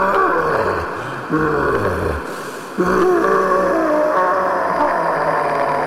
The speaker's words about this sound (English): It screamed, a howl of despair and hate, and vanished.